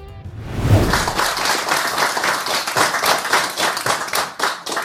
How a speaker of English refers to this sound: first of all, who's clapping in this?